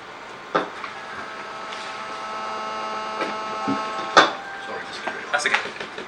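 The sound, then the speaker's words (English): A fire alarm sounds a steady, high-pitched electronic tone continuously throughout, with a few scattered knocks and thumps and faint background voices. “fire alarm to go off now.”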